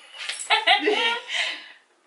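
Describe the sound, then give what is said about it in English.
A puppy whimpers and yips, a quick run of high, thin cries over about two seconds that fade out at the end. “Puppies!”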